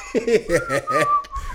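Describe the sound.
A man gives a short, casual whistle, a thin steady tone lasting under a second, amid chuckling, voiced laughter.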